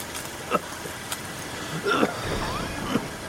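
truck engine revving

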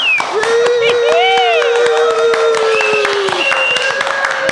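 audience applause and cheering

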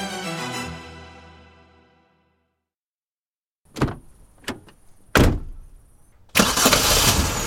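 car engine starting

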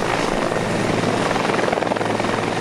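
helicopter flying

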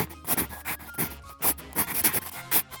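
pencil writing on paper

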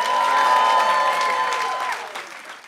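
audience round of applause

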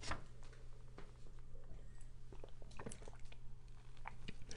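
sipping coffee

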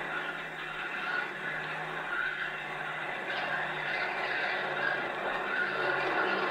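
aircraft flying overhead

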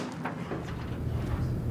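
door opening

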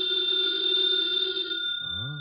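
telephone bell ringing

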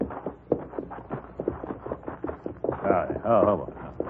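horse hooves clip-clopping

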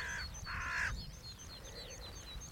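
carrion crow cawing

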